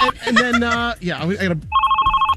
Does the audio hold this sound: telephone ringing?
yes